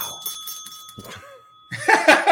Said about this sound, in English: As he rings his own bell.